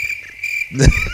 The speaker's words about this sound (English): And there would just be nothing but that cricket sound that I like to play once in a while.